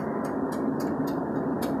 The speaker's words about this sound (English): Sorry, my car's making a funky noise and it's like clicking. I think I have something trapped in under my hood. It's tapping.